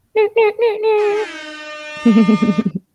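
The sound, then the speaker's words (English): A voice imitates an air horn as a shout-out to Steve, a band's front of house guy: three short, punchy honks, then a long sustained blare that drops lower and ends in a wobbling, warbling tone. “Wait, let's do the air horn for Steve.”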